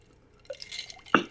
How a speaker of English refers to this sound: I think we should raise a glass to all the monster kids out there, Clink. And all those folks who love 80s horror. Right. You know? And the ones we lost, we'll pour it out a little bit.